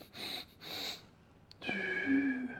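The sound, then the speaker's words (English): A person imitates forceful pranayama breathing: two sharp, hissing nasal breaths in quick succession, then a brief pause and a louder, wheezy, snorting exhale with a slight voiced whine, prominent. “Did he do that pranayama breathing where you do...”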